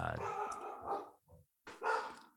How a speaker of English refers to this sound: I hear dogs.